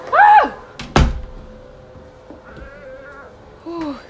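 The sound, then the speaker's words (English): A bathroom door slams shut once, loud, with a heavy low thud. Short high, wavering animal-like cries come just before and again near the end. “Just... give me privacy! Ooh, a big one's coming! Close the door!”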